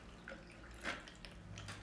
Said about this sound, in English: I'm just pouring it over ice, if you're wondering. You can probably hear that.